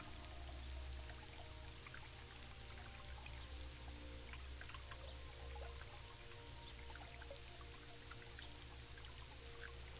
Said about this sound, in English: The sound of the rain and the water from the spring are peaceful.